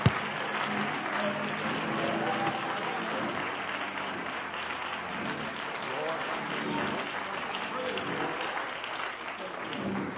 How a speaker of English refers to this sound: Would you clap your hands to the Lord and love him before you're seated?